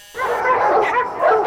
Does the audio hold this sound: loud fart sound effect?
no